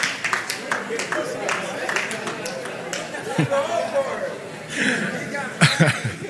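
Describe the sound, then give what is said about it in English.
Scattered audience applause for a preacher's remark about having unlimited data on his phone, loose individual claps mixed with crowd chatter and bursts of chuckling and laughter, growing louder with a few sharp claps toward the end. “The moment the preacher gets applause for something he did not intend.”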